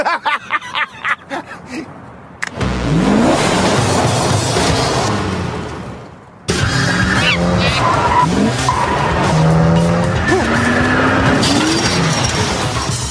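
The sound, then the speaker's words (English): A car driven by a monkey, the Trunk Monkey Auto Recovery System, peels out with loud, drawn-out tire squeals and a roaring engine, intense, breaking briefly before a second burst of screeching and revving continues to the end. “Monkey can drive. That just happened.”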